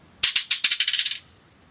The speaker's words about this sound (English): Let us know when you throw the first dice," and you'll hear them.